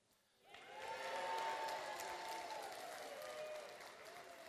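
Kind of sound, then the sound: crowd, audience clapping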